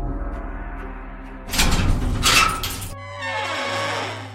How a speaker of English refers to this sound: Ah, it worked! A secret door opens and you make your way outside.